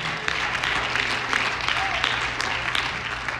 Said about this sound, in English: Clap your hands and praise God.